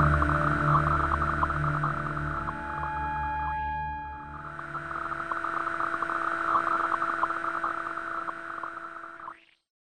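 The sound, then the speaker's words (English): A steady, eerie buzz of radio static replacing the radio communications of the Flight 19 Avenger bombers, with hissing noise and several droning electronic tones underneath, continuous for about ten seconds with a brief dip midway before cutting off abruptly. “They were replaced by an eerie buzz of static.”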